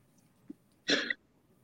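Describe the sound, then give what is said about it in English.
A single sharp sneeze bursts out, lasting about a third of a second, with a small breathy intake just before it and a quiet background around it. “Bless you. Okay. Bless you.”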